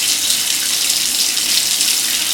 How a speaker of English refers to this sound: I pulled back the shower curtain, turned on the water, and peed into the bathroom.